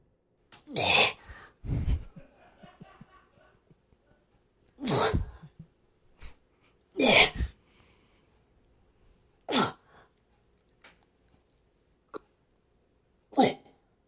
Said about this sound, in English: Did you hear the fart?